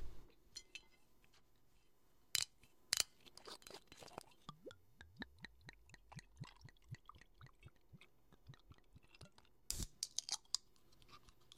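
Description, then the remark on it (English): A couple of sharp cracks as a bottle cap twists open, followed by a steady, rhythmic glugging pour with light fizzing and a few clinks near the end. “Now, for SMR's sakes, let's crack it open and pour it up.”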